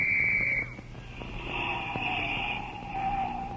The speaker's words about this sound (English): That quarter I spent for this police whistle was a pretty smart investment.